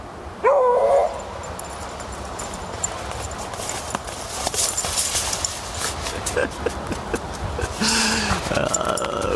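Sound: dog barking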